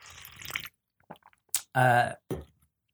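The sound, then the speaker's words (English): A noisy slurp of hot coffee, then soft swallowing clicks and a satisfied voiced exhale, with a brief breathy sound at the end. “I'm going to sip some coffee.”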